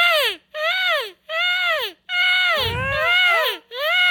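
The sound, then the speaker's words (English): Several people imitate bird calls with their voices, giving loud, high, swooping whoops in repeated bursts with short gaps, the calls overlapping into a warbling tangle partway through. “We all need to do the bird sound.”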